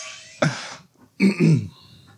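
A sharp cough bursts out, followed after a short pause by a longer, gravelly throat clearing in two rough pushes. No one speaks.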